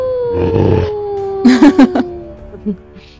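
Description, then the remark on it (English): A werewolf stands up and howls defiantly: a long, drawn-out howl that slowly slides down in pitch, loud, with short rough growling bursts layered over it partway through. “So as your first claw rends, he leaps back and is able to kind of shoulder rolls out of the way as it scrambles up, stands up, and howls defiantly.”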